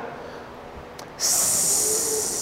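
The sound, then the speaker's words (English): A person imitates the snake from the Genesis story of Eve with a long, loud, breathy hiss that starts abruptly and holds steady for over a second, following a brief quieter lead-in. “That's the snake.”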